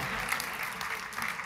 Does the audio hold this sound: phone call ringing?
no